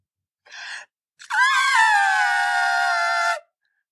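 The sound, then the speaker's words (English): A person vocally imitates an elephant's trumpet: a quick breathy intake, then one loud, brassy, sustained blare that rises in pitch and holds steady for about two seconds before cutting off. “Excuse me, that was a really good elephant sound.”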